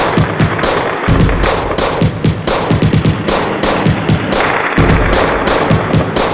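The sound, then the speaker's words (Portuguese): Loud, rapid bursts of rifle gunfire crackle almost nonstop, overlapping volleys with a couple of brief pauses, harsh, with no voices, as rifle shots and tracer rounds light up the sky. “Tiros de fuzil iluminam o céu. Balas traçantes podem ser vistas de longe. O barulho assusta.”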